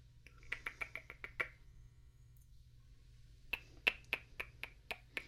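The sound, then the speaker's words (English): Sharp, hollow tongue clicks come in two quick runs of about seven or eight each, separated by a short pause, over a faint steady low hum with no talking. “you also started doing this strangely relaxing sort of clicking with your tongue whenever you're concentrating.”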